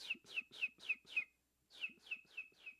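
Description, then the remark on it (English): A homemade imitation of bird chirping: a quick run of five bright, whistly tweets, a brief pause, then four more, fairly loud with no talking. “The sound of birds. By the way, I made that bird sound effect myself.”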